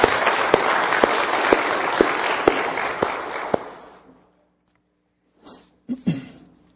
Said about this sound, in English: And I think it is our duty to honor them. Amen, church? That'd be all right. We can clap for that. We can clap for that.